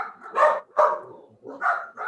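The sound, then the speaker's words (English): Several sharp dog barks in quick succession, fairly loud, with short pauses between them and no one talking. “Yeah, see, Those dogs agree. The dogs agree.”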